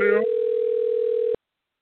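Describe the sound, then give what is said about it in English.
A steady electronic ringback tone from an outgoing phone call sounds once for just over a second, then cuts to silence; a brief voice-like blip precedes it. “While I'm waiting on him to figure out if he answers his phone”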